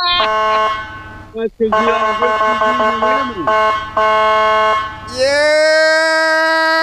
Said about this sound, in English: That guy was honking.